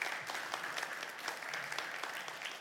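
An audience claps steadily after a Bible reading, a dense, even wash of many hands with sharp crackling bursts throughout, sustained at a moderate level with no voices over it.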